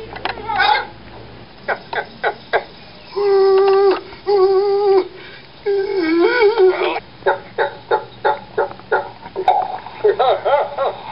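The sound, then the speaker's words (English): A person's voice imitates a frantic chicken with its head cut off: rapid staccato clucks, stretched wavering squawks and cackles in erratic bursts, loud, with no other talking. “Here's an impersonation of chicken with its head cut off.”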